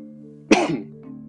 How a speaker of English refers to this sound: Though, excuse me for coughing, by the way, I'm just getting over a cold.